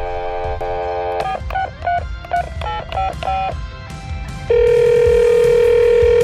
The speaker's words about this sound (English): So look, how about we make one more call for this episode? It's a pretty long episode, and we'll talk to somebody here. So let's dial that phone.